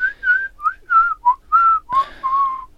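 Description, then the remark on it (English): A person whistles a short, wavering tune of about eight quick notes, fairly loud, with a brief click partway through and no talking. “Obviously that was whistling.”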